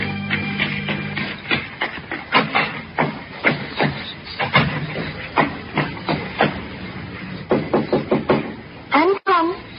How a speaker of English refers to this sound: I waited for her knock.